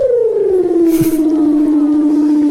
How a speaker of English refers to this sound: Weddell seals are known for their unusual vocalisations, like these, captured in a Facebook video shared by non-profit organisation Ocean Conservation Research.